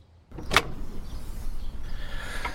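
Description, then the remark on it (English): A front door opens with a sharp latch click, followed by a low, steady rumble of background noise. It is moderately loud, with no voices. “I can't tell you how disappointing it is to open the door expecting Deliveroo and see the angel of death.”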